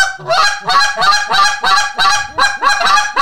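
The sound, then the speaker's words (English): A goose call blown in a rapid rolling series of sharp, honking double clucks, about seven loud bursts in quick rhythm, with no talking over them. “And I mean, like, the stacked double cluck, or not the stacked, it's the rolling double, I think.”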